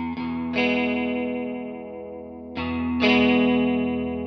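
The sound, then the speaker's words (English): Sustained electric guitar chords played through a Julia chorus pedal, with a shimmering, swirling chorus effect, struck four times in two pairs, each ringing out and slowly wavering in pitch. Fairly loud, with no voices. “so I got the Julia on right now. I guess we'll just try that one out.”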